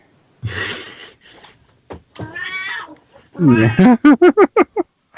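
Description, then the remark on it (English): A hungry cat meows insistently for food, starting with a few drawn-out cries and ending in a quick run of five short, loud meows. “Kitty wants to eat.”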